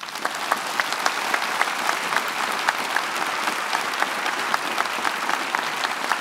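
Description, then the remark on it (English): An audience applauds steadily, a dense, even wash of many hands clapping at a constant loud level, with sharper individual claps popping out now and then and no voices over it; the applause is for Paul McDermott, Marcia Langdon, Jane Caro and David Marr. “Please keep the round of applause going.”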